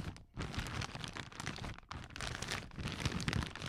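Plastic wrap being crumpled, a steady crackling, crinkling rustle that runs for a few seconds with two brief pauses, fairly quiet and with no voices.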